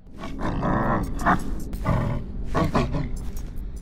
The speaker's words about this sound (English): Was that a dog growling?